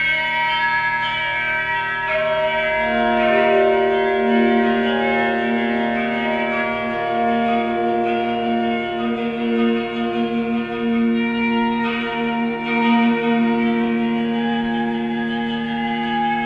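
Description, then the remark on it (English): A string instrument from a musician's piece, heard through a pickup that captures only the sympathetic vibration of the unplayed side of the string, rings out in a sustained, shimmering drone, its dense overtones humming and beating together at a steady, fairly loud level, with no voices. “It's just kind of vibrating sympathetically with the side of the string that I am playing.”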